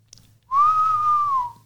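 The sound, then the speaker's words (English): A person imitates a blown whistle with one steady, clear whistled note held for about a second, fairly loud, dropping slightly in pitch as it ends. No one speaks. “And he reaches up, grabs the whistle, puts it in his mouth, and he starts to go.”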